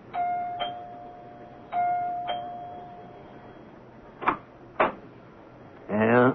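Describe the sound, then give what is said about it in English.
A two-tone doorbell of a house chimes twice in the morning, ding-dong, fairly clear, followed by two sharp knocks and then a voice starting to speak at the end. “Lem Regan rings the doorbell of Clyde Wilkins' house.”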